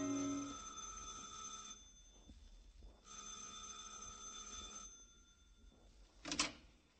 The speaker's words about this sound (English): And keep on walking east from Broadway to Park and up to the 70s and stop in front of the canopied apartment house. Pause, smoke a cigarette, then go in. And on the second floor, ring a bell.